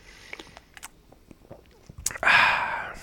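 A sip of Treehouse at 10, Treehouse Brewery's 10th anniversary double IPA at 8.8% alcohol: a few soft mouth clicks, then a short airy slurp that swells and lingers at the end, with no one talking.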